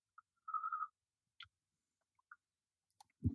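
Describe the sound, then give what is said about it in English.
Quiet mouth sounds of someone tasting about a teaspoon of olive oil by chewing on it: a short slurping draw, then a few scattered wet smacks and clicks with pauses between, no talking. “We're going to take about a teaspoon and kind of chew on it.”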